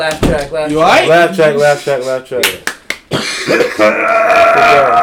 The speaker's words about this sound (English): Stop coughing, you whore. You keep coughing, we're going to stab you in the head next.